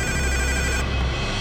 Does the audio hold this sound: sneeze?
no